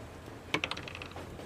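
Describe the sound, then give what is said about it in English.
Dice are rolled for a dex save, clattering across a hard surface: a few sharp, bright clicks in quick succession, then a quicker run of lighter rattling taps that fades out within about half a second. No one speaks. “Roll me a dex save.”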